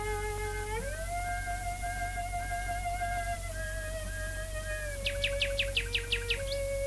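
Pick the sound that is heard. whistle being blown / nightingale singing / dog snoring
nightingale singing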